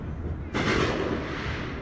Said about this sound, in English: Hope you can hear it. It is crazy. You can see fireworks going up You can hear guns going off, repeater guns.